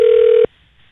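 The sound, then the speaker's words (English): A steady, loud telephone tone hums over a phone line for about half a second as a call is placed from a work phone, then cuts off abruptly into near silence. No one speaks. “We called you right directly on the podcast thinking you would not pick up and have forgotten about our phone call, but you surprised both of us.”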